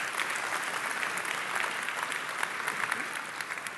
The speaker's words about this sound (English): Now you can clap.